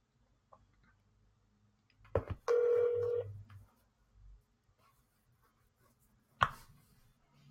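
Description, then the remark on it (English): A single loud burst of a phone ringing as an outgoing call is placed, bright and tonal for just under a second, framed by a couple of sharp clicks before and another click later, with no talking. “It was ringing and then it wasn't ringing.”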